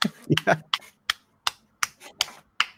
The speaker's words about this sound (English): That's a soul clap, everybody.